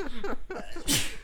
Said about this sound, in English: Bless you. Oh, yeah. Yeah. Two in a row.